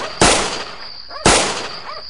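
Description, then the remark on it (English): Two loud, sharp gunshots fired up into the air, about a second apart, each a sudden crack trailing off into a brief ringing decay, with a faint steady high tone in the background and no voices. “Three shots up in the air shouldn't be enough to run anybody off.”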